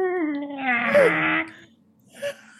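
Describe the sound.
A voice imitates the deep, contented moan of Shrody, a very large house cat, as its ears are scratched: one drawn-out, throaty tone lasting over a second that sags lower in pitch, followed after a pause by a short, softer sound.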